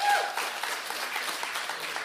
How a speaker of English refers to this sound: Give him a clap of praise for that.